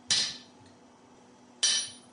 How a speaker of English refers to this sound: Yeah, it's cold now, so we can try it on the side of the anvil, see if it'll cut.